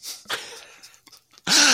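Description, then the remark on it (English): A sneeze: a couple of soft breathy intakes, then a sudden loud, noisy burst with a voiced edge that runs to the end. No one speaks. “Oh, God bless you,”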